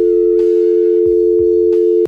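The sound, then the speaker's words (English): A steady, unbroken telephone dial tone hums on its own for about two seconds, broken by a few sharp clicks like a handset being put down. “Matter of fact, you said the feds are tapping your phone. Hang up.”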